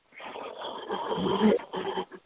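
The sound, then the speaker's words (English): A man breathes heavily and wheezily, a long rasping inhale-exhale followed by a shorter ragged breath, with a snore-like rattle through it and no talking. “I'm not sure what he's doing, but he is breathing funny.”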